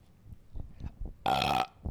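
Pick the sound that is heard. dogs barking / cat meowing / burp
burp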